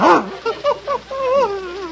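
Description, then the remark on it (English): An Airedale terrier named Adolph whines and yips: a quick burst of short, pitched yelps followed by a longer, wavering whimper, with no talking over it. “Here he is, Mr. Montague. The Airedale that's going to work with you.”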